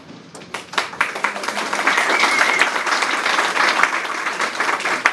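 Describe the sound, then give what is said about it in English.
An audience at a talk by their rector applauds steadily for about five seconds, a dense wash of many hands clapping that starts with a few scattered claps and swells to a sustained, even roar. “Applause for applause.”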